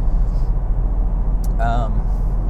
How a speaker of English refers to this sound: I don't know if you can hear my tires, they're square at the moment, thumping along. You hear that oscillation?